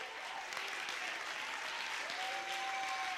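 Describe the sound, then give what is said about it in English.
A church audience claps their hands during a sermon in dense, steady applause that fills the whole stretch at an even loudness, with a faint sustained tone rising underneath toward the end. “Clap your hands if you believe what I'm preaching.”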